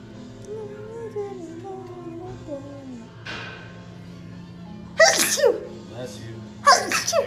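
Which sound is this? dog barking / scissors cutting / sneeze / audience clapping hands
sneeze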